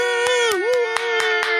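golf clap

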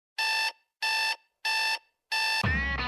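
alarm clock ringing

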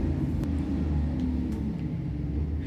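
loud motorcycle passing by

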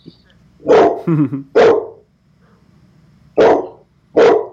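chocolate Labrador barking

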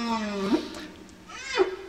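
whale vocalizations

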